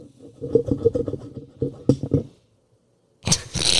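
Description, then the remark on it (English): A run of low, uneven tapping and clattering gives way to a pause, then bright, sharp glassy clinks ring out loudly near the end as a fork strikes a glass. “That was my like tapping the glass with a fork at a wedding.”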